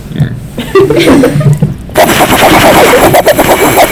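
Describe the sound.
A voice imitates a helicopter, starting with a low, buzzing hum that pulses, then switching to a louder, breathy, rapid chopping rhythm that continues steadily to the end.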